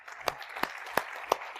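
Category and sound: crowd, audience applauding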